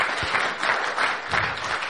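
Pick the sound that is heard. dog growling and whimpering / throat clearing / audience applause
audience applause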